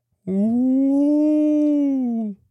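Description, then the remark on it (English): A person's voice imitates a long, low, haunting howl, a single sustained tone of about two seconds that rises slightly, holds steady, then fades out, heard alone without other talk. “Sorry, she wrote it again like that, so I had to do it. Yeah. Long and low.”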